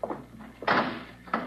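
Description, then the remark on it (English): A heavy vault door swings shut with a loud, resonant thud, followed moments later by a second, shorter clunk as it settles into place. “please stand away from the vault, Miss Bowen. I should like to close the door”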